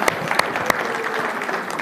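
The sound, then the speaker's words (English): A burst of audience applause for a man who has just shot a compound bow on stage, dense and steady, with many hands clapping at once and a few sharper claps standing out, sustained for about two seconds at moderate loudness. “Everybody give Troy a round of applause.”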